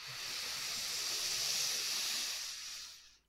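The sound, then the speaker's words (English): A long, deep breath drawn in through the nose: a steady, airy hiss lasting about three seconds that swells slightly in the middle, then tapers off into quiet. No one speaks. “Okay, so when you're ready, nice big deep breath in through the nose.”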